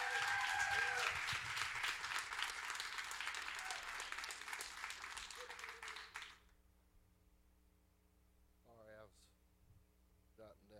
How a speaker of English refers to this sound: so let's just give him a round of applause as we welcome him to the stage.